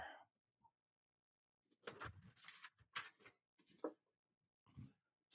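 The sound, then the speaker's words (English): A voice imitates a dinosaur snoring during a reading of the children's book Dinosaurs Don't Have Bedtimes by Timothy Knapman: a few breathy, rasping snore sounds in an uneven rhythm, separated by short quiet pauses, with no ordinary talk. “Snore.”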